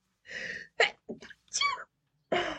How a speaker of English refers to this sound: That was the tiniest sneeze. Oh, a little mouse sneeze. Oh, that was so sweet.